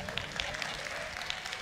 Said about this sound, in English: All the women are applauding.